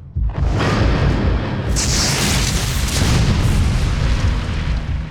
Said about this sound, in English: Asclepius looked skyward as the clouds erupted. A bolt of lightning tore the sky, crashing down to strike the exact spot where the doctor stood.